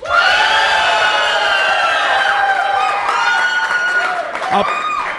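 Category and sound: crowd, audience applause and cheering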